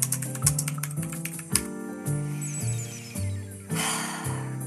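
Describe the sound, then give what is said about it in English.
Rapid clicks on a computer keyboard, typing something in to look it up, tap along over steady background music with sustained low tones, the keystrokes quick at first, then thinning out as the music carries on. “I'm typing it in now,”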